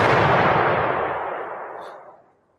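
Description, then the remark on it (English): A single loud explosion sound effect with a broad, rumbling boom that starts at full force and slowly fades out over a couple of seconds, with no voices. “Let me get an explosion for the women who aren't gold diggers.”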